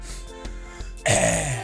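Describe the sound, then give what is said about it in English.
A loud cough and throat clearing, coming after a few faint clicks and a short quiet stretch, with no speech. “Sorry, that was coffee too. I cough.”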